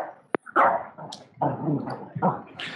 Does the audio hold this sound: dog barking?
yes